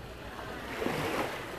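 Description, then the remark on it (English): Ocean surf washes steadily onto a shore, a broad continuous roar with a gentle swell in the middle, heard alone with a touch of wind and no voices. “I listen to insects and the birds and the waves.”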